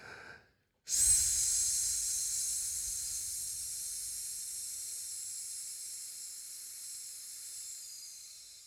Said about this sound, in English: So you kind of hear how it sounded like really straight. It wasn't moving. Mm-hmm. When you practice that enough, that will turn into your vocal as well. So that S sound breathing, like just letting the S out, because you can hear yourself vibrating